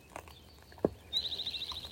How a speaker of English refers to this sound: Up with the birds. How lovely the way the birds greet the new day.